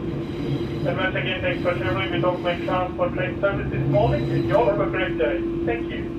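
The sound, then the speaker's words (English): A steady low rumble and constant droning hum fill the inside of a passenger train arriving at its last stop, Meadowbank Transport Centre, with people's voices chattering over the noise throughout. “Well, that's the end of our train trip and the end of this podcast.”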